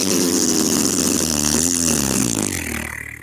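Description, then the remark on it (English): A loud, sustained vocal imitation of a big fart, a buzzy, wobbling raspberry that drags on for a couple of seconds before trailing off, with no other talking. “And I said a big fart. It's a big...”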